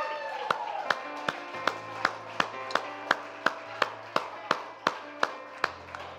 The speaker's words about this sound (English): All right, let's give the Lord a clap hand, huh?